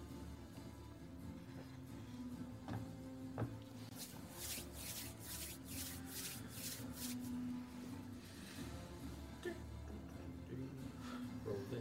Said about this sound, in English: Rolling dice. I've rolled every fucking dice on my tray. Well, all the D6s. Oh, they've all met the table.